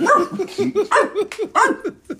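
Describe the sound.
A person imitates a dog, letting out a quick, loud run of about ten yappy barks in a bouncing rhythm, with no other talking.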